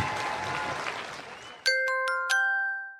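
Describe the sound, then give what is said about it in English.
Audience applause for Sir Patrick Stewart and Daniel Stewart fades out over about a second and a half. Then a bright, ringing chime jingle takes over, with several sharp struck notes that sustain and slowly die away. “Ladies and gentlemen, please, a huge round of applause for Sir Patrick and Daniel Stewart.”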